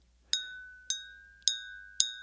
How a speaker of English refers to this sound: It's not the most melodic bell, but my partner Aya gave me this bell